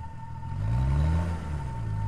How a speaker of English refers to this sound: Mark drove crazily along the streets, dodging and weaving people, cars, and debris.